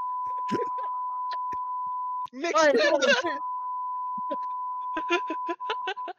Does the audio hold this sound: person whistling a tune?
no